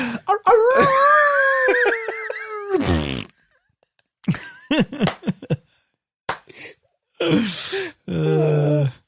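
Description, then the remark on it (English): A person vocally imitates a coyote, a rising, wavering howl lasting a couple of seconds, followed by a burst of noise and then choppy, fart-like vocal sputters and a buzzy low tone. “Excuse me, did you just howl and then turn it into a fart?”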